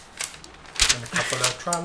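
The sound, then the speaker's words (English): A page is flipped, giving short crisp papery rustles and soft clicks over a couple of seconds, with someone speaking quietly underneath. “Turning the page.”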